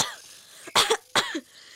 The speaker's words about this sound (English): Blue laughed and then he began to cough.